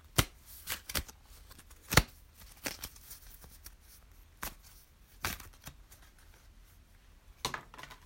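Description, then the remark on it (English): A deck of cards being shuffled to draw a card for the day during a guided meditation, with soft papery riffling broken by several sharp, crisp snaps and slaps at irregular intervals. No one speaks. “Let's see what the card is for this day that we need to be focusing in and tuning into.”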